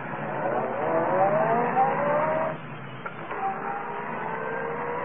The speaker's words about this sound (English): Well, then start this car.